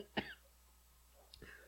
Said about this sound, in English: I'm coughing, just yelling at you. I'm out of breath, yelling at you. I haven't even fucking thrown a punch yet, and I'm coughing. Can you hear this?